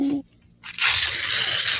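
A paper envelope being torn open: after a brief hush, a loud, bright, crackling rip runs continuously for about a second, rough and papery with no voices over it.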